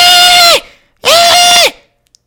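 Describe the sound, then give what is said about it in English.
A person imitates a screaming guinea pig with two loud, high-pitched squeals, each about half a second long and steady in pitch, separated by a short pause, with no other talk. “I'm just trying to picture a guinea pig screaming, and I imagine it goes something like this.”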